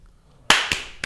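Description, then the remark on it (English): A group claps together in unison, producing three sharp, loud claps in quick succession, the first slightly smeared as the hands land almost at the same moment, with no talking in between. “Oh, yeah, let's do the clap, and we'll get it on the thing.”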